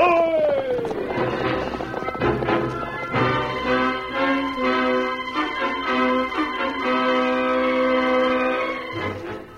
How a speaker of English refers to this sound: From out of the past come the thundering hoofbeats of the great horse, Silver. The Lone Ranger rides again.